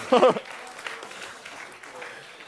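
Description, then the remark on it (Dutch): A short voiced sound opens, then a faint, steady patter of audience applause continues evenly for a couple of seconds without any clear rhythm or peaks. “Laten we een applaus geven.”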